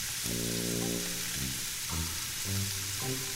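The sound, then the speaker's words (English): Onions and meat sizzling steadily as they brown in a hot pan, a continuous crackling hiss, with a low, wavering tonal hum rising and falling underneath. “Let's just keep it going for like maybe another 30 seconds on each side.”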